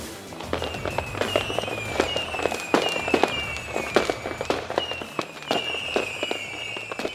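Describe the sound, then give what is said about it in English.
A dense fireworks finale: rapid booms and crackling bursts one after another, with whistling rockets streaking down in pitch between them, loud and continuous with no one speaking. “To justify your entrance fee, please enjoy the fireworks finale and parade extravaganza.”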